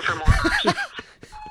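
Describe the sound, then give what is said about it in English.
Laughter and chuckling fill the first second, then a steady electronic voicemail beep tone starts near the end and holds, clear and fairly loud, signalling to record a message on a phone call. “Please leave a message at the beep.”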